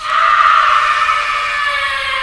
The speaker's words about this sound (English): those moments in time in my life where something happens that just gets under my skin and it makes me want to make that sound. let's play the scream again here. Let's see what it sounds like.